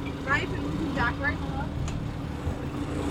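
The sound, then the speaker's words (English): A motorboat engine on a lake drones steadily, a continuous low rumble lasting the whole time, with brief faint voices rising over it near the start. “Yeah, we hope we don't get stranded on the lake when we turn it off, if we can't get it started again.”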